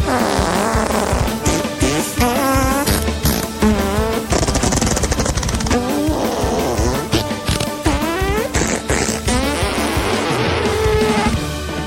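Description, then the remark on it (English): A lively classical tune performed with buzzy, sputtering fart noises, from an album, pitched runs rising and falling over a low rumbling accompaniment, loud and continuous throughout. “…”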